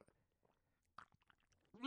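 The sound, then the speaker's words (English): Quiet, wet mouth noises from quickly gulping a whole 16-ounce canned drink in six sips, a few soft swallows in quick succession, ending with the start of a voice. “Yeah, I'm going to drink it real quick.”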